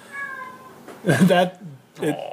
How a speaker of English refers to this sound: Yeah, see, listen to her. She's loud. That's probably my mother's cat complaining all the way from Chubbuck. Oh, she's right there by the door. She wants to go outside.